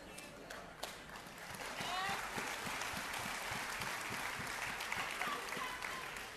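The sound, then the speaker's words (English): An audience claps steadily, a dense wash of many hands that swells after the first couple of seconds and holds at a moderate level, with faint chatter underneath. “Oh, you should have clapped a lot louder for that.”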